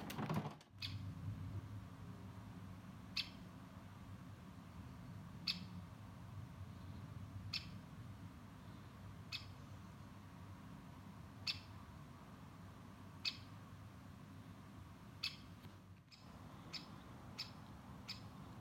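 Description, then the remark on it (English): A great spotted woodpecker gives sharp, single 'kik' calls roughly every two seconds, ending in a quicker run of several, over a steady low background rumble with no talking, in Oxfordshire, England, on 25 June 2016 during hail. “I'm being heckled by a spotted woodpecker.”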